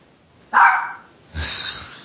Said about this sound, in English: That's why the dog's barking, because you named him Doyle.